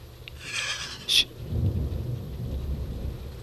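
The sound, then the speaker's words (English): Low thunder rumbles about 6 miles away after a big lightning flash, building into a sustained rolling growl, with pouring rain hissing over it and a brief sharp crackle near the start. “That was a big lightning. Oh, yeah. One, two, three, four, five. There it is.”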